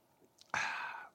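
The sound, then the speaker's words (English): A quick sip from a drink, a soft intake of breath, then a loud, breathy, satisfied exhale lasting about half a second. No one speaks. “Hold on, let me have a sip.”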